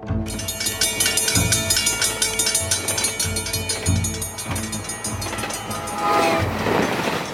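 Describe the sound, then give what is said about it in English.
A train rolls past, loud, with a steady rhythmic clatter of wheels over rail joints beneath a bright, ringing metallic whine and rushing noise throughout, with no voices. “Before I fell asleep, and I remember I seen that train going by, and for some reason that just burned in my head.”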